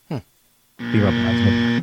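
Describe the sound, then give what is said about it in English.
A brief vocal sound, then a buzzer goes off: a loud, steady, harsh buzzing tone lasting about a second before cutting out abruptly, with some voice sound blending under it. “Sorry, what did the buzzer?”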